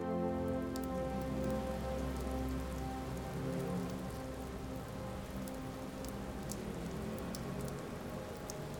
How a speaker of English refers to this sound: Imagine living somewhere where it rains all day, every day. Nothing changes, but it's inevitable that you're going to get a little wet, no matter how hard you try.